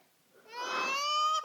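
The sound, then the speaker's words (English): A baby lets out a single drawn-out, wavering cry lasting about a second, fairly loud, rising in from near-silence with no talking around it. “This is just some poor soul who died in infancy, and instead of being reincarnated into a newborn baby, this reboot box grabbed him.”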